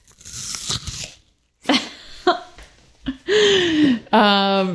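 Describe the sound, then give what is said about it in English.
Loud crunching as someone bites into an apple, a crisp burst followed by a few shorter chomps, with voices making brief sounds and talking in between. “I'm going to eat this apple and then put it away.”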